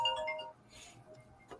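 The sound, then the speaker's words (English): A phone's electronic ringtone chimes briefly for a call from an unknown caller, with a few clear, bright melodic tones, then trails off into quieter background noise. No one speaks. “But unknown caller. That's what happened. Let me turn this phone off.”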